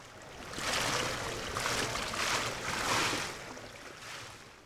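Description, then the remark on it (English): Water at Parliament Hill Lido, a huge 60-metre unheated outdoor pool in North London, on a rainy day: a steady, hissing wash of sloshing and patter that swells and eases in several gentle waves, with no voices. “Here we are at Parliament Hill Lido, which is a huge 60-metre unheated pool in North London.”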